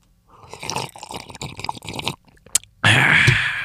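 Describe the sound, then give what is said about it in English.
A voice imitates slurping: a stretch of wet, smacking mouth noises, a sharp click, then a loud, sustained sucking hiss to the end. No one speaks. “They don't hear the slurping.”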